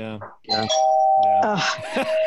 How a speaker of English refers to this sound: Now the ghosts are here. They're very polite and ring the doorbell.